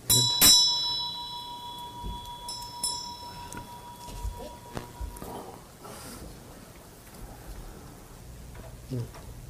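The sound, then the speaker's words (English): An inexpensive meditation bell is struck near the start and its bright, steady tone rings on for several seconds, slowly fading, while soft movement and faint voices murmur in the background. “I love this bell, you know, it's not very, it wasn't a very expensive bell, but it'll ring for a long, long time, you know.”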